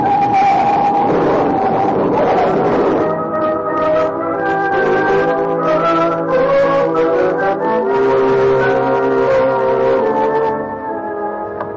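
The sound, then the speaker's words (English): A loud, sustained squeal of car tires gives way to a rough crash burst in a car accident, followed by several seconds of blaring, horn-like tones that fade slightly at the end. No one speaks. “Oh, a little auto accident. The other car didn't bother to stop.”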